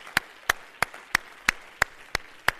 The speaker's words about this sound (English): Somebody clap your hands to the Lord.